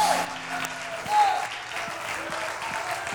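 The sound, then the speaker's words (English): An audience at a church worship service claps their hands in a steady, dense wash of applause, with faint tonal music and a few murmuring voices underneath throughout. “Come on, why don't we clap our hands?”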